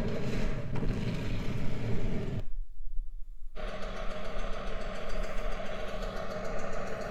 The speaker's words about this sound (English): Is that a lawnmower? That's a bulldozer, boy.